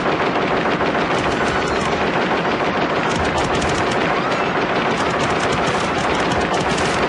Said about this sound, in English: And then when Ed 209 opens fire on him, like, even in the theatrical cut, it's still gory as hell